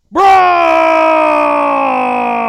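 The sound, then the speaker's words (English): An ambulance siren sound effect blares in abruptly and holds one steady, loud, buzzy tone for a couple of seconds, alone, fading only slightly toward the end, for a Roman Reigns versus Braun Strowman ambulance match. “Roman Reigns versus Braun Strowman ambulance match.”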